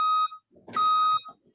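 Two loud, steady electronic beeps from a truck's backup alarm, each a flat mid-high tone lasting about a quarter to half a second, separated by a short pause with a faint rumble.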